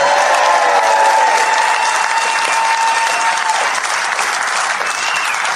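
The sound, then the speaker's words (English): Sustained applause from an audience at the Sundial Theatre for Mr. Jimmy Walker, a dense wash of many hands clapping at a steady loud level, with a few faint cheers or whistles riding over it before it tapers slightly. “Please put your hands together for Mr. Jimmy Walker.”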